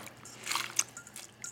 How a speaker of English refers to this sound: I've got 4 regular cans of black beans, and I drained them and rinsed them in the colander. I'm just gonna pour those in.